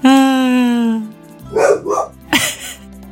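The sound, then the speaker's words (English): A dog lets out a sustained, whining howl, then fires off a few sharp, loud barks in quick succession, with no one talking. “Why are you barking at me?”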